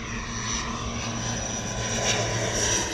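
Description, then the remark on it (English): A propeller airplane drones steadily as a travel transition effect for a flight over the Rocky Mountains to Vancouver Island, British Columbia, its engine producing a continuous low hum with harmonic bands and a faint whine above, holding an even, moderately loud level throughout without any voices. “Let's head over the Rocky Mountains and across the Pacific Ocean until we hit Vancouver Island, British Columbia, and land at Kitties and Cream Cafe”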